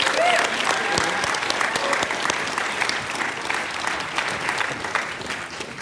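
A crowd applauds steadily, a dense, sustained wash of clapping that stays loud throughout and eases off slightly toward the end, with faint voices mixed in.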